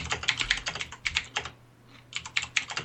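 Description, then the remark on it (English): Rapid, uneven clicking of keys on a mechanical keyboard, fairly crisp, with a brief pause midway before the typing resumes. No one speaks. “Hey, we got a little typing audio going on there. Yeah, that's John's mechanical keyboard.”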